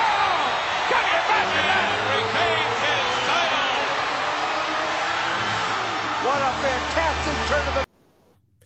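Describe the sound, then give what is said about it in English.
The MSG crowd roars in sustained cheering after the finish of a cage match, a dense wall of yelling voices that stays loud and steady for several seconds before cutting off abruptly. “That was a hell of a finish, and what a reaction from that MSG crowd.”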